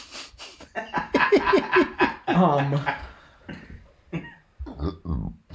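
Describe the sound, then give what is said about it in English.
A sharp, noisy sneeze bursts out at the start, followed by a stretch of voiced chuckling and throat sounds at moderate loudness, with people talking. “Gross. Excuse me. Bless you.”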